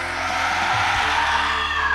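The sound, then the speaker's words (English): A harsh, loud shriek from the monster Oblivion as a beam is shot at it, roaring steadily for two seconds, a dense, noisy screech with a low rumble beneath it and no break or pause. “And you just shoot this beam at Oblivion as Oblivion shrieks out.”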